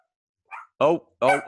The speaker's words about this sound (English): Is there a dog attacking your leg? What's up, dog? Oh, bless.